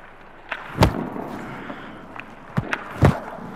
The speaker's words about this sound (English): That thud is the sound of a rubber hockey puck that's been shot at Gibson that he is blocking with his body.